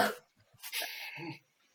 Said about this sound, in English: Who's coughing?